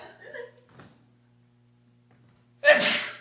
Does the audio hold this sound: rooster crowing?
no